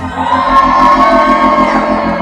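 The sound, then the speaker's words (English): An audience shouts "relax" back together, a loud, sustained swell of many voices calling out at once, with whoops and cheers mixed into the dense crowd noise. “Somebody shout relax. Somebody holler relax.”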